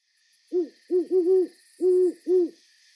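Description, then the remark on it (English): An owl hoots five times at night outside the window of a home backing onto a forest on Vancouver Island, Canada, in an uneven rhythm, two close together in the middle, low and mellow against a faint steady hiss of night insects in the background. “The other night, I woke up to the sound of an owl outside my window.”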